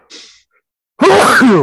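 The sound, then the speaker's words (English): Outdoors, a short, breathy intake of air, a brief pause, then one loud, forceful sneeze with a strained, voiced 'achoo' quality that cuts off quickly. “We'll edit that sneeze out, but that's the bad thing about doing video.”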